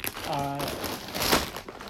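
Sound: crinkling potato chip bag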